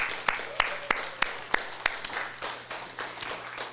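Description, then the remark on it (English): An audience applauds its Sunday school teachers. A few sharp, evenly spaced claps stand out at first, then blend into a steady wash of crowd clapping. No one speaks. “Turn and find your teacher and just give them a round of applause.”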